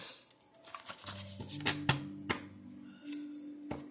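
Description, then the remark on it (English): A deck of oracle cards is shuffled: papery flicks and several crisp snaps arrive in uneven bursts over a low, steady background hum. “All right, so the jar cards of hidden truth is actually shuffled.”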